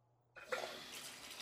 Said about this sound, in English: It's a little tepid. I'll add some more hot water.